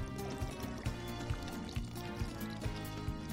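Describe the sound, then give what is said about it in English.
Knob Creek bourbon whiskey pours steadily into a cup for a few seconds while a drink recipe is made, a continuous gurgling trickle with small rhythmic glugs, fairly quiet and with no talking. “That is now poured into the cup.”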